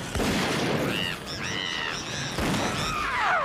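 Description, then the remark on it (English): Sharp rifle shots crack out amid a dense, noisy clatter, with several high, whining tones sweeping through the middle and another sliding whine near the end; no one speaks. “A little rifle fire might clear the air!”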